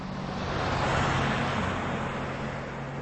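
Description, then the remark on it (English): A large Chevy pickup truck with double wheels at the back drives past, its loud engine rumble and tire roar swelling then easing slightly over a few seconds, with no one speaking. “Thought I'd pause whilst an enormous great truck drives past me.”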